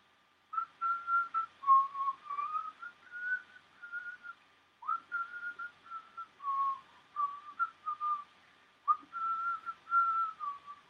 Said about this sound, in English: Behind an old oak tree, he could hear whistling. It scared him at first, but then he recognised the tune, and it went.